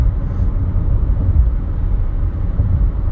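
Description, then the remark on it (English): A steady, low engine rumble inside a car, with a constant muffled drone and no voices or distinct events over the whole stretch. “I'm in the car.”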